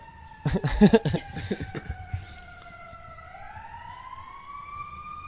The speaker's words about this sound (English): Are you singing the siren? I know that people may be hurt, but, like, we're trying to record here.